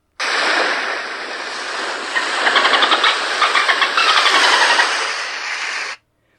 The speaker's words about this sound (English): That is coming from … on Spotify. And presumably they put a microphone in the water or near the water to catch dolphin noises, but it's the same dolphin noise that's been going since Flipper.